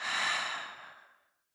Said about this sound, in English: And we're going to take a deep breath in, holding it at the top, thinking of that one thing, and now breathing out.